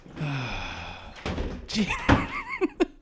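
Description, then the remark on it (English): Objects get knocked over as someone rushes out in a hurried scramble: a rapid run of heavy, loud thuds and clunks, with a door-like bang near the end and a brief squeaky tone at the start. “That guy was fucking out of here in a flash. He knocked shit over.”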